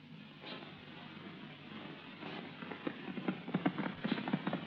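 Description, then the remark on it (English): Horse hooves galloping as riders ride out on a ranch, in a quick, rhythmic clatter that grows louder and more distinct toward the end, with no voices over the steady pounding. “let's slow down to a gallop.”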